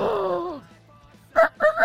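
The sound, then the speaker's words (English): A man imitates a rooster crowing: a drawn-out, strained vocal cry that slides downward, a brief pause, then two short, loud whooping bursts. “Rock 'em, sock 'em, jock 'em, block 'em, …, the rooster!”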